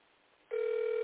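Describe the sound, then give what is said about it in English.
After a moment of faint line hiss, an outgoing call's ringing tone starts abruptly: a steady, loud electronic tone heard through a phone line, with no one speaking. “I need to go make this show just be about Jeanette calling people on the phone.”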